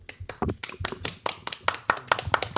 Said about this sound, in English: Bobby, round of applause for Bobby Bonilla's agent.